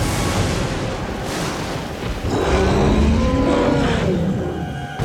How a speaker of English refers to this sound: The Bahkauv let out a disgruntled sound, a moo and a roar all at once.